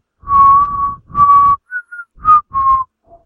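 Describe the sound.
Someone whistles the slow hymn tune 'Jesus Loves the Little Children': two long held notes followed by a few shorter ones, clear and fairly loud over a low rumbling background, ending on a faint note.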